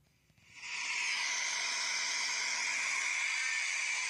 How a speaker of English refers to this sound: That, my friend, is the sound of a bus dropping off illegals straight from the border.